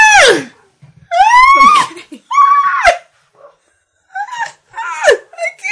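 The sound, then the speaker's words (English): The speaker's own dogs barking in the background in a handful of high, yelping bursts, each sliding in pitch, with short gaps between them; fairly loud, no one talking over them. “There's also dogs barking in the back.”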